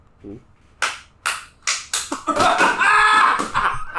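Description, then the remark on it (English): Several sharp, crisp hand claps ring out one after another, speeding up slightly, then blur into a denser, louder wash of overlapping claps and noise before tapering off. “I'm gonna do the claps.”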